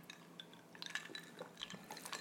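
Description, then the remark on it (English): Someone drinks from a can of fresh period blood: quiet sips and liquid slurps with a few light metallic clinks, soft and intermittent, with no talking. “right, so we're going to take a drink out of the can of fresh period blood.”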